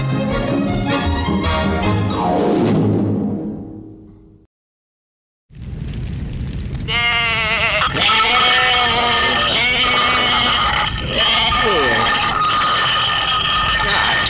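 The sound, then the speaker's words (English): After a brief tonal passage and a second of silence, a herd of about 1,000 goats bleats loudly and continuously at feeding time, many wavering calls overlapping, with some voices mixed in. “Once feeding time happens with the goats, then they tend to do their business.”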